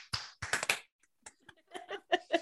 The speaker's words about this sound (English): Y'all want to do the clap-a-roo? Sure.